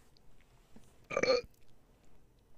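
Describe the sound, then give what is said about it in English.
A single short, soft burp sounds briefly against a quiet background, lasting well under half a second with no talking around it. “That was the shortest, weakest burp I've ever heard in my life.”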